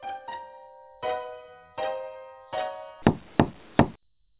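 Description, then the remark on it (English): A few ringing, chime-like tones sound first, then three firm, evenly spaced, fairly loud knocks on a door at dinner time, ending in silence. “Bobby has just sat down to dinner when he hears a knock at the door”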